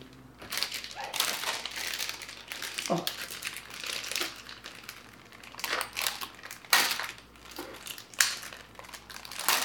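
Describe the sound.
Crackling, crinkly snaps come in irregular bursts as a perforated gingerbread piece is broken off while building a gingerbread house, bright and crisp with sharper cracks near the end, while faint voices murmur underneath.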